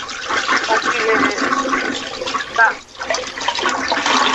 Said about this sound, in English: Hang on. I'm going to flush this toilet again.